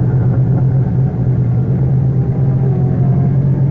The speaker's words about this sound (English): Quickly, I got into the car. And I got out of there as fast as I could.